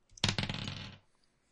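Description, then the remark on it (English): A twenty-sided die clatters across a hard surface and lands on a three, a sharp first strike followed by a quick burst of rattling bounces that slows and stops within about a second, with no voices. “Roll a 20 for me.”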